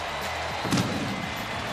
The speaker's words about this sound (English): What's going on? They're sending fireworks for the Cub home run? I guess they are.